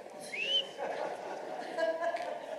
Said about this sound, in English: I can't whistle.